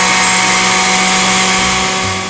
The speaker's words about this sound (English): I think now is as good a time as any for a little break so they can run the blenders over at Orange Julius